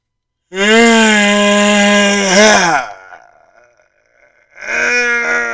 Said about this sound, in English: I like to call that a yawn. I like to call that a release. If you don't do it like you're tired, you do it like you just put everything into it. What that does is that just releases everything out of you.